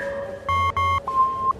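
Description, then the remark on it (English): Telephone dialing tones: two short electronic beeps in quick succession, then a longer, thinner steady tone, fairly loud, with no voices. “End tape. Connect me to Prosecutor Handelstein.”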